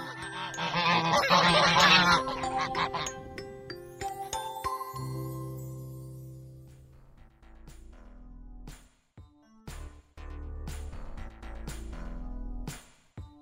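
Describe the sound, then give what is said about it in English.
A flock of geese honks loudly for a few seconds, a dense overlapping clamor, before giving way to sustained tinkling, chime-like tones with no talking. “I still see the geese from time to time, but not as regularly as I used to.”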